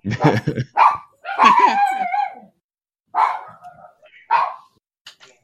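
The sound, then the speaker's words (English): A dog named Jack barks in a short, irregular burst of four or five sharp, high-pitched yips and barks, some drawn out into whiny tones, separated by brief silences. “Oh, Jack's barking.”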